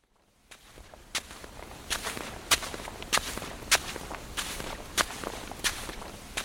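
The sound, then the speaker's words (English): Steady footsteps crunch across the white sand of a beach littered with dried seaweed as people walk along it, at an even walking pace, about ten crisp, gritty steps with a soft hiss of sand between them and no voices. “As we walk along this beach, I'm overcome by that same overwhelming urge I know all too well.”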